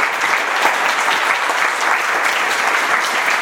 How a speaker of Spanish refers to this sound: Bueno, muchas gracias, chicos, un fuerte aplauso para nuestros ponentes, por favor.